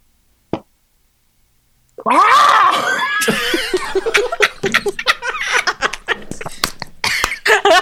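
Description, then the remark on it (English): After a single click and a brief silence, a voice imitates a ghostly horse whinny: a wavering, raspy neigh that breaks into choppy, sputtering bursts, with some laughter-like sounds mixed in. “Gotta channel my inner ghost horse.”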